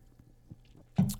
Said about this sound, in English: I'm going to take a sip of my drink here because I know that I'm going to start getting a little teary-eyed.